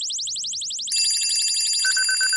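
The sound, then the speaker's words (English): An alarm clock rings with a rapid, high-pitched electronic warble repeating in a fast, steady rhythm; after a second extra tones layer in and a sustained beep joins near the end. “That's an alarm clock. That's not a siren.”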